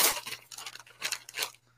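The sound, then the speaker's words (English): Gift wrapping paper is ripped open in a quick series of sharp, crackling tears, four or so rough bursts, with no one speaking over them. “open the damn gift. You can pull shit up later. Open. Damn. You don't have to save the paper.”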